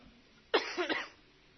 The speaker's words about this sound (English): But they say the first sign of COVID-19 is a dry cough. I'm not saying it is.